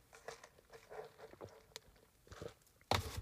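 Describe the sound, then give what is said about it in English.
Quiet slurping sips of coffee, a few soft breathy pulls in a row, ending with a sharper clunk like a mug being set down. No talking. “I need to have another sip of my coffee.”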